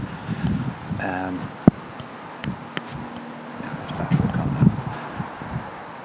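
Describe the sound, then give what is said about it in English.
Wind buffets the microphone outdoors beside the main A12 road in Suffolk, a steady low rumbling roar that swells in gusts, with a few sharp knocks and a brief tonal warble partway through. “Sit down in the car where there's actually no wind.”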